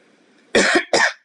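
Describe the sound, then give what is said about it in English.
A loud sneeze in two sharp, breathy bursts, the first longer and the second following a brief gap, with only faint low murmuring before it. “Bless you. Bless yourself. Thank you.”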